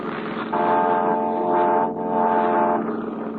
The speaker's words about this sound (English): They're close enough to hear you blow the fog horn.